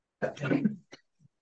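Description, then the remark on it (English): A single rough cough, followed by a couple of short, softer throat sounds trailing off into quiet. “And I'm going to cough, excuse me.”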